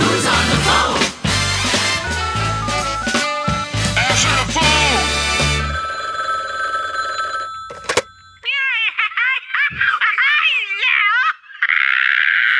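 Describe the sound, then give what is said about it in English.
A telephone rings with a warbling electronic trill, repeating in quick bursts after a stretch of busy music. The ring is loud, with no talking over it. “what are you doing on the phone?”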